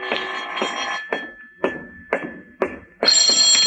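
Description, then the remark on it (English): A telephone bell, a call from the telephone company, starts ringing loudly at the end, following a run of sharp, evenly spaced knocks over a faint steady tone. No one speaks. “This is the telephone company calling, Mr.”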